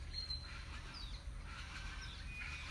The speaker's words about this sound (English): You probably can hear those birds. They're quite loud. They've been going all night long.